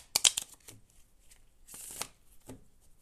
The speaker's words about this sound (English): All right, one more time. I feel this one more time again. I just have this feeling that there's one more shuffle in it.